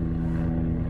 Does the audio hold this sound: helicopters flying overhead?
yes